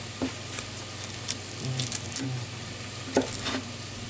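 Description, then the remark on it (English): Garlic and leeks sizzle steadily in a pot as the garlic is browned, a continuous crackle broken by sharp pops and a few soft stirring scrapes, with no one talking. “And before the leeks give off too much moisture, I'm going to add a little bit of garlic, just so that the garlic can get some color without boiling in the liquids released from the leeks.”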